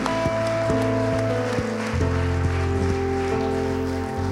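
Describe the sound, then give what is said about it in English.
A church audience claps continuously in praise of Jesus, a dense, steady wash of many hands lasting the whole time, blended with sustained chords and a stepping bass line of music. “Come on and give him a hand clap of praise in this place today.”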